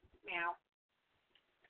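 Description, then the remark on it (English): A single short, bright, loud meow imitated by a human voice, followed by near silence with faint rustling and a couple of soft clicks. “No, meow, I got meow, a better meow.”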